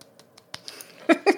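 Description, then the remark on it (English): A soft golf clap: a run of light, quiet hand claps at a steady patter, with the last two claps a little louder and fuller. No one speaks. “The golf clap.”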